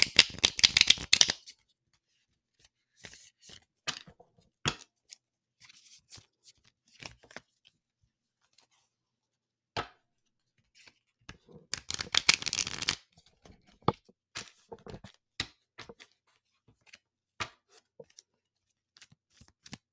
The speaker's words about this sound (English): So I know that this was a quickie. But I did not forget, and we're about to chaos shuffle until my deck spits some shit out. So let's shuffle.